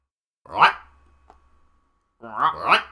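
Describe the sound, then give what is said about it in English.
A voice imitates the call of a creature called the Groy, a growl that quickly gains in volume and pitch into a harsh bark-croak burst, followed after a short pause by two more rising, strained cries. Fairly loud, with no other talk. “When calling, the beast lets out a growl that gains in volume and pitch quickly, becoming a sharp and extreme hybrid of a bark and a croak that sounds like Groy.”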